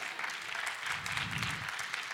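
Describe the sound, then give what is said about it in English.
An audience claps together during a sermon in a steady, dense burst of applause that holds an even loudness throughout, a continuous wash of many hands with no voices standing out. “And we're clapping, but let's be honest.”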